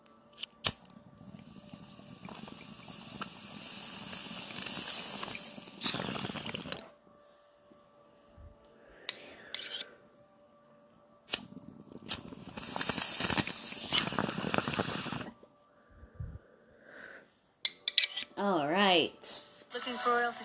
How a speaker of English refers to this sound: So let's take this bong hit, guys, and I will see you guys next week.